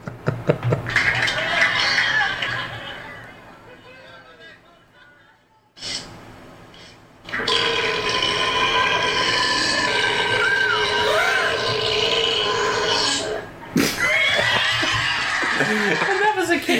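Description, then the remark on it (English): A wrestling camel's burp: long, loud, gurgling and rasping bursts that swell and fade in three stretches, broken by a brief quiet gap, with snorting, chuckle-like noises mixed in. “Can I please play the burp?”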